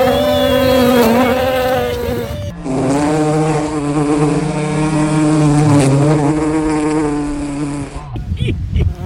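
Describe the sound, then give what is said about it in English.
A bee buzzes loudly, its droning hum shifting pitch as it circles around for several seconds before cutting off abruptly. “That bee was not happy about that. It was trying to get on the show.”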